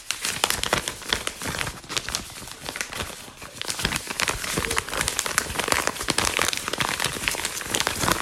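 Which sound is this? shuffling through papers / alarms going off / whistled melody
shuffling through papers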